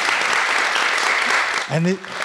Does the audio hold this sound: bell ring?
no